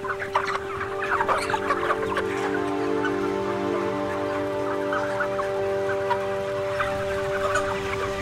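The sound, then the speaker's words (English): A dense chorus of broiler chickens, crammed together in a crowded shed with litter lining the floor, clucking continuously, many birds overlapping at once, with a steady mechanical hum beneath them. “Crammed together, these birds can hardly move without bumping into one another. They spend day after day of their short 40-day lives here, growing larger and larger and sitting on the feces-covered litter lining the floor.”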